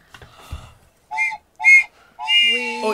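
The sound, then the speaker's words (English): A referee's whistle blows the final signal: two short, sharp blasts followed by a longer sustained one, loud and shrill against a quiet background. “And then the final whistle goes.”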